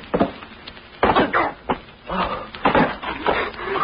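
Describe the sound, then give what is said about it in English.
Several loud, crunching bursts of crashing and rustling as people fall through a hay-covered hole in a floor and tumble into loose hay, with scattered thumps and scraping between them. “We fell through a hole in the floor. It was covered with hay.”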